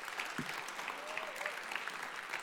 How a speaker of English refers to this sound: Let's give them a round of applause and thank them for being here.